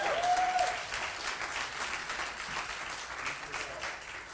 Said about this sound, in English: This here is genuine worship. Give a round of applause to the worship team.